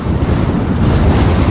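A deep, loud rumble of thunder rolls on steadily, heavy in the low end and sustained without a break, with no voices over it, as a storm with lightning draws closer.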